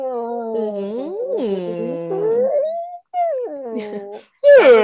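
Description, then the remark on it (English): Human voices imitate whale calls: long, sliding, moaning tones that rise and fall and overlap one another, with a few short pauses and a louder, higher wail at the end. “Feel like we should just make whale noises.”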